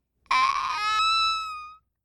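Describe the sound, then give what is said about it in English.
A single short, high-pitched yell rings out alone, thin and fairly quiet, holding for about a second and a half before trailing off. “If anyone touches me, I have to yell.”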